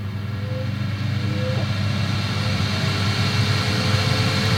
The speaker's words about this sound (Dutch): Heb je die tijd ingesteld, dan druk je nog een keer op de knop. Dus op het wieltje. En op dat moment hoorde je, wat je aan het begin van de opname ook hoorde, het opstarten van de airfryer.